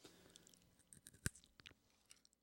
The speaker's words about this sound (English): You guys want to hear me eat a marshmallow? No, they don't. Yeah, they do. This is for science.